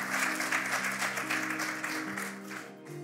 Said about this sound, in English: I don't know who you are this morning, but can we just give a big hand clap of praise to anybody who could have possibly received Jesus for the first time?